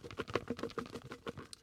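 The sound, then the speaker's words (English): Slips of paper are shaken in a bucket in a show's studio to draw the winner of a copy of a book, making a quick run of dry, papery rustles and light clatters. The rattling is fast and fairly quiet, with no voices. “I have the bucket. Let me shake it up.”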